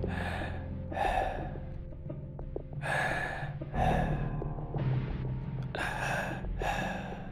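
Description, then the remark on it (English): A voice imitates heavy breathing: several loud, rhythmic breaths in and out, drawn-out and breathy, with no words spoken and a faint low hum underneath. “And then like a heavy breathing, just like,”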